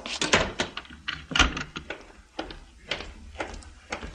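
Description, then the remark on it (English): A door thuds shut, followed by a series of sharp clicks and rattles as the door is locked, with short pauses between the sounds. “Quickly, lock the door and come back here.”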